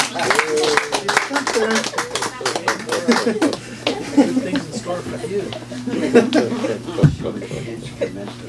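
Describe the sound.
An audience applauds with a burst of dense clapping that thins out after a few seconds, mixed with chuckles and overlapping murmured voices that carry on to the end.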